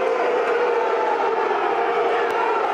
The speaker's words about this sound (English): The sound of booing echoing around the den before the match against Derby County. And it was definitely the Millwall fans.